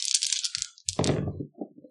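Five dice are rolled for an opposed agility roll: they rattle with a quick run of bright clicks, then tumble onto a hard surface with a louder clattering burst that settles into a few faint knocks. No one speaks.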